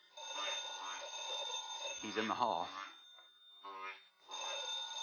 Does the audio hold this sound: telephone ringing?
yes